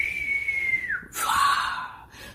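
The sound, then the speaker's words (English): A voice imitates the whistle of an incoming bomb: a steady high whistle that slides downward, then breaks into a short breathy burst with a lower hissing tone, fairly loud. “You could hear this whistling as they were coming in.”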